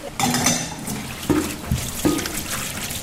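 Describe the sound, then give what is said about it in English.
Water pours steadily into a metal cooking pot to cook pasta, a continuous rushing splash with a couple of brief clanks of the pot partway through, fairly loud. “Now we start to put water in the pot.”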